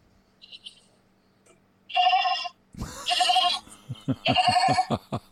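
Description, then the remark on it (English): A goat bleating sound effect: several loud, wavering cries in quick succession with brief pauses between, preceded by a faint higher call. “They get Millie's Acting the GOAT Week Award.”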